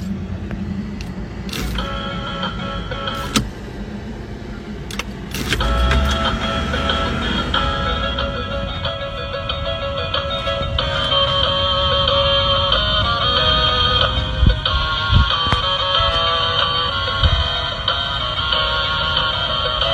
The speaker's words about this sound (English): He describes himself as a Volvo enthusiast, and he has done something really spectacular with his Volvo. He has changed the dinging sound when he puts his keys into the ignition, he's changed the dinging sound to something very familiar to us.